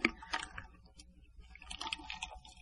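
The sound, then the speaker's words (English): Soft sipping of iced tea, a few quiet slurps and wet mouth sounds scattered over a couple of seconds with no talking. “Actually, it's a drink of my iced tea.”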